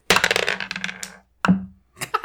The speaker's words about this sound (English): So let's grab the dice and roll it.